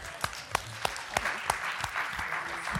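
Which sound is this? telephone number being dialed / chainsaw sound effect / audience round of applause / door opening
audience round of applause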